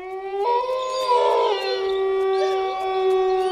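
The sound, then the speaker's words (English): Coyotes howling together, several long wavering wails overlapping and sliding in pitch, sustained and fairly loud throughout with no talking. “Bill did all the things those animals did, like chase lizards and howl at the moon.”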